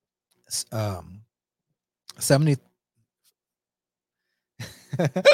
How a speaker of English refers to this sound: Yeah, oh man, I got the hiccups at the perfect time.